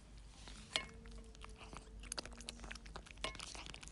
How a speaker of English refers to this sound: Are you enjoying those tender victuals? Are you chomping on those delicious morsels? Are you crunchy on those gizzards and giblets?